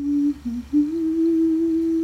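A woman hums alone, a brief note dipping slightly lower, then rising into one long, steady held tone at a moderate, even loudness.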